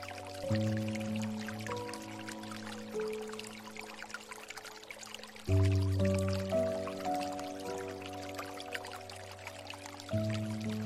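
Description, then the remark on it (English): Gentle water trickles and flows steadily in the background while soft sustained notes of 432 Hertz piano music ring out, with new chords entering every few seconds. No one speaks. “As the gentle notes of the 432 Hertz piano music intermingle with the soothing sounds of water, feel the harmonious blend of serenity and happiness enveloping you.”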